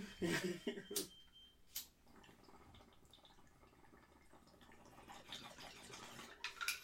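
Water is poured out of a bong, opening with a few sharp splashes and clinks, then settling into a steady trickle that swells slightly near the end. No one speaks.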